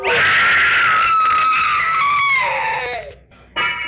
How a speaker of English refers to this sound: I wish I never heard that scream.